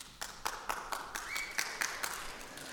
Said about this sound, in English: I'm glad you're clapping because that is good news.